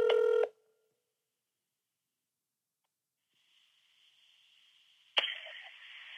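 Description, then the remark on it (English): A single short burst of a phone's ringback tone, heard from the caller's end, followed by a quiet hiss and then a sharp click as the line is picked up. “We'll see if she answers the phone. Okay, it's ringing, y'all.”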